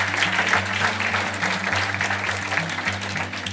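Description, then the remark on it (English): An audience gives itself a round of applause for attending that night, a dense, loud wash of clapping throughout, with sustained cheering voices and a low hum running underneath. “So give yourselves a round of applause for being here tonight.”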